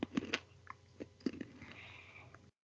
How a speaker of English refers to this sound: Do you think it's rude to be crunching on candied nuts into a microphone on a podcast? Done. Lids on. Sorry. Just had a craving for something in my mouth.